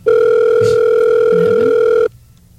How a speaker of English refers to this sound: That's on your phone. Well, let me pick it up.